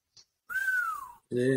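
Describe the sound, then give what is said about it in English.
A single drawn-out whistle, fairly loud, gliding slowly downward in pitch for under a second, then a voice briefly starts speaking. “Long whistle.”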